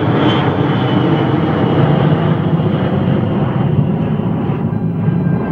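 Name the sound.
jet airliner engines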